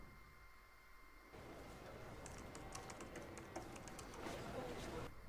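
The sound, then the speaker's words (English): Rapid, irregular clicking of fingers typing on a computer keyboard, quiet, running steadily for several seconds over a low room hum. “What are you typing?”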